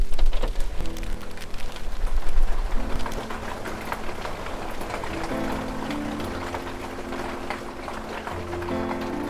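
A dense, steady pelting of hail or heavy precipitation drums down, loudest in the first few seconds, with sustained musical tones running underneath throughout.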